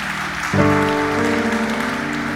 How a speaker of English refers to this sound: Hallelujah. Give the Lord a clap offering for that.